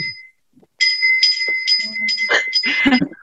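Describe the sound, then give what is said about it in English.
A front doorbell, rung by pulling a quaint chain and dating from the Grimwades' day, jangles with a bright ringing that rattles on for a couple of seconds with uneven shakes, after a brief tinkle and a quick spoken word. “This is the front doorbell, which is you ring by this rather very quaint chain and you pull the chain”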